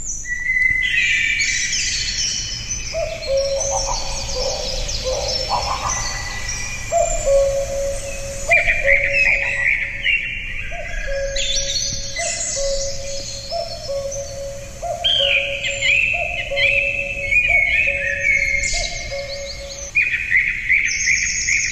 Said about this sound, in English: Here's a little sample of it. It features most prominently a cuckoo, a song thrush, and toward the end, I think, a greenish warbler.